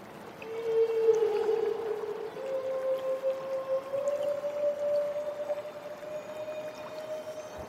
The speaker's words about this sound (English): We leave you this week up in Southeast Alaska in the company of humpback whales. These humpbacks were recorded underwater where they're keeping company with a harbor porpoise.